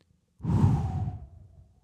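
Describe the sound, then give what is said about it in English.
A single long, forceful breath blown into a typical birthday balloon: an airy rush lasting over a second with a faint whistling hum that slowly drops in pitch before fading out. “And all of a sudden I start to push some air into it.”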